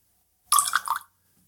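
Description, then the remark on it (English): A brief splash of just a wee touch of water poured into a glass of whisky, a bright half-second trickle with gurgling tones, then quiet. “Just a wee touch. And it's a wee touch.”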